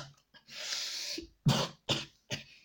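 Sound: coughing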